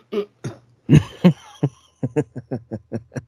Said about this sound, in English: I coughed.